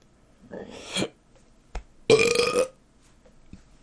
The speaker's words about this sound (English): good burps out there. I learned that in school.